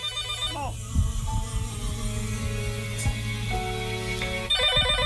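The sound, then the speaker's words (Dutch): A telephone rings with bright, repeating electronic trills at the start and again at the end, while sustained music plays underneath through the middle. “Gaat de telefoon ook nog?”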